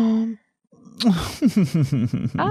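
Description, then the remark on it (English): A voice imitates an elegant snore: a short hummed tone, a brief pause, then a quick rhythmic run of breathy, hissing "shush" pulses, about six in a row. “To me, that's kind of an elegant snore.”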